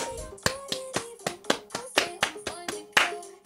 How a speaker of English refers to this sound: No, but that's like a weird clap. Yeah, there you go. That's a weird way to do it.